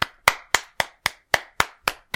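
A quick, steady run of about nine sharp hand claps, evenly spaced, each one crisp with a short ringing tail, with no talking.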